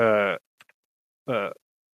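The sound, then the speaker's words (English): A person uses their voice to imitate a goblin snoring behind a door: two short, rough, throaty snorts separated by a pause, fairly loud, with a faint click between them. “hear snoring from this behind this door, which sounds like probably which a door?”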